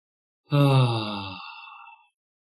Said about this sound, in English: Yeah, nice yawn. Nice yawn.